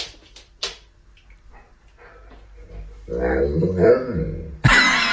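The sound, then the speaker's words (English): A dog lets out a drawn-out, wavering vocalization that rises and falls like a spoken phrase, sounding like "where are you going?", fairly loud, as it appears through a kitchen door. Faint brief knocks come before it, and a sudden loud burst follows. “People are just saying, did that dog just say, where are you going?”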